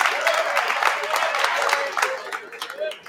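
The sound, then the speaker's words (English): A crowd breaks into a round of applause for players from the West Genesee hockey team: dense, steady clapping that holds for about three seconds before thinning out, with faint voices mixed in underneath. “Give them a round of applause here, these gentlemen from the hockey team.”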